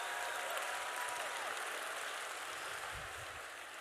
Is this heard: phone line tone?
no